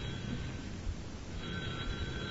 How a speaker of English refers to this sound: Answer the phone, Eddie, and tell him that I'm still quitting, that he is a jerk, a crumb, and an ignoramus.